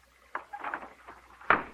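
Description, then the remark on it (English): A window being opened: a sharp click, a short stretch of rattling and scraping, then a louder thump as it comes to rest. No one speaks. “Open a window. How do you guys breathe in here?”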